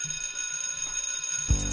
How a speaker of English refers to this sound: Okay, ring that bell.